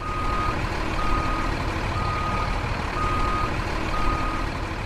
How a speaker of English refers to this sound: Beep, beep. All right. Beep, beep. The sound of a fucking truck backing up at 4 o'clock in the morning to deliver all the ready-made meals.